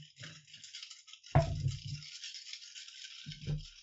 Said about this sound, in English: That was some very happy dice noises.